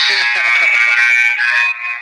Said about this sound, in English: I hear the buzzer in the background. Are you at a game? Yeah, I'm at Washington High School.